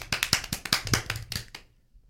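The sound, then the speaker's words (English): A short burst of applause for special guests: a dozen or so quick, uneven handclaps running for about a second and a half before stopping abruptly, with no voices. “Guys, let's give a big round of applause to all of our special guests.”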